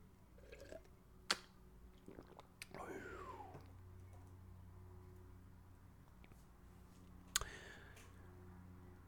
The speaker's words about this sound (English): Quick sip of water, boss. Don't mind me, boss.